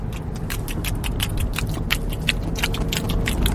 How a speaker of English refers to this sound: In honor of Easter, I'm gonna chew a Cadbury egg.